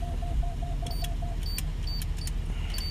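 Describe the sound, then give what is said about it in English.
A truck's proximity warning beeps in a quick, steady series of short, mid-pitched tones over a low engine rumble as the truck approaches a gate at a workplace, followed by a few sharp clicks and higher chirps. “All right, that beeping sound was the truck telling me that I was close to the gate, but we're all Gucci, fam.”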